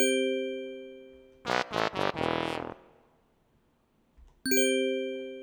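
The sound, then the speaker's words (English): New quiz-day answer buttons for right and wrong: a ringing chime fades, a harsh buzzer gives three short blasts and one longer blast, then after a pause a bright chime sounds again. No one speaks. “And we have new, for quiz days, we have new buttons for right and wrong.”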